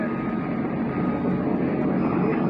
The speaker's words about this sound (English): I think I just made the statement that no German planes have been seen, and I think that was the first one we've seen so far.